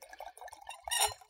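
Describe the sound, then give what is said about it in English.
Wine glugs into a wine glass, a short burbling pour with trickling drips that swells briefly louder near the end before tapering off. “I already poured mine.”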